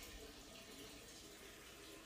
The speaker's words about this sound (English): Oh my god, can you hear him peeing?